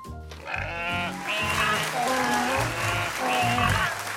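A steady burst of applause carries on for several seconds for Shasta and the Sheep Dance Troupe after their dance performance, mixed with loud, repeated sheep bleats layered over the clapping, and no one speaks.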